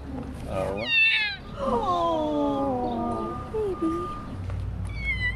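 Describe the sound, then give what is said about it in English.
Two kittens, just pulled out of a drain pipe on 10th Street in Washington, D.C., meow repeatedly, a string of high, thin cries, some rising and others drawn out and sliding downward, over a low steady background rumble. “Novotny has just pulled two kittens out of a drain pipe.”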